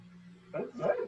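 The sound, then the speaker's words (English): A female dog wearing a diaper gives two short, moderately loud barks in quick succession, the second slightly stronger, over a faint low hum and no talking. “Yo, why does your dog have a diaper on?”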